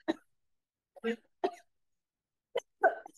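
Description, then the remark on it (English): A fit of coughing: five short, sharp bursts at uneven intervals, some coming in quick pairs, moderately loud, with silence between them and no talking. “I was told if you put your hands up, it helps with the coughing.”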